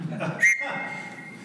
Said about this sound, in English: And I'm pleased to show you the world's first sonic screwdriver. It's a life vest whistle.